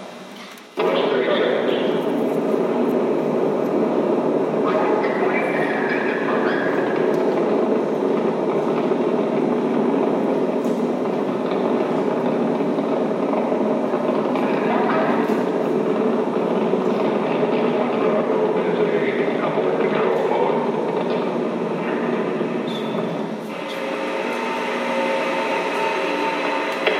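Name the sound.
rocket engines roaring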